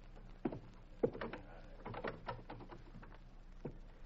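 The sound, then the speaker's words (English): A front door is handled and opened, with a couple of sharp latch clicks followed by soft rattling and shuffling movement, fairly quiet overall. “We'll have to go out the front door.”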